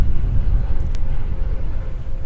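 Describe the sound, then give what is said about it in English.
A loud airplane passes overhead, roaring steadily, a dense low rumble that fills the whole clip without rising or fading, with no voices over it. “And I think, as I said, the plane's pretty loud right now, so I'm going to give it a second.”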